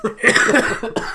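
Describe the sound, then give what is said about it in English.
A person coughs hard several times in rapid succession, a loud and raspy coughing fit with a brief pause before a final cough. “I mean, I hope people just were like, fought through the whole cough inside, because I just cannot help it.”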